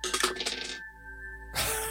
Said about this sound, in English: Oh, damn it, man. Two different dice in a row, actually. A natural 1, but my perception is a +6. So 7.